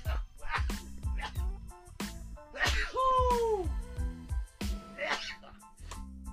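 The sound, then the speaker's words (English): A single abrupt sneeze caused by allergies, with a voiced sweep at the end, standing out over a quieter, steady tonal background and a few short vocal noises. “And yes, that was a sneeze, everyone.”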